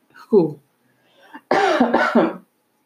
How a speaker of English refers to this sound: I've been sick, so I have a little cough and I'm trying to get rid of it, but it's not going away. So excuse me if I have to cough during this recording.